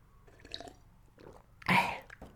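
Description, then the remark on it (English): Quiet mouth sounds as someone takes a quick sip of water during a water break, ending in a brief, louder slurp and swallow. No one speaks. “Quick sip of water, water balls, water break balls.”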